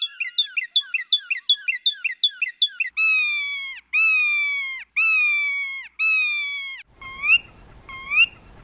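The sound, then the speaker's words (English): A loud car alarm cycles through its patterns: rapid repeated chirps, then four long wailing tones, then rising whoops with a rumble underneath, from a car parked on the street near museums, set off by people walking by. There is no talking. “And when people walk by them, like with a real car alarm, they'll sometimes trigger it without knowing it. And the cars will start shrieking and chirping and doing their thing.”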